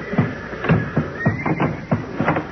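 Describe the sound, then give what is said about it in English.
Several horses in their stalls whinny and neigh in frantic, overlapping bursts as the building they are in is set on fire, their shrill, wavering cries repeating rapidly one after another without pause, loud and agitated throughout. “They're beginning to yell good now. I guess they know what's up.”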